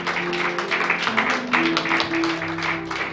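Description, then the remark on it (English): An audience claps their hands as a hand clap of praise to Jesus, a dense, continuous wash of applause, steady and moderately loud, with sustained musical tones humming underneath. “We'll give Jesus a hand clap of praise.”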